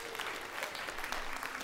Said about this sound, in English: And that's something to clap about. Everybody clap, please.